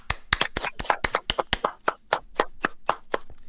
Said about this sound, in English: What was that noise ahead of that? I wanted to get your attention. Oh, were you clapping? Yes, I was Okay. Everybody clap their hands.